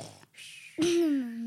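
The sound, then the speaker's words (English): A mother fakes a snore: a breathy, rasping inhale, a short pause, then a drawn-out, low, voiced groan that holds steady and fairly loud to the end. “Mum's fake snoring over there.”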